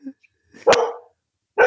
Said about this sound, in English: Oh, the dog's barking again. Listen.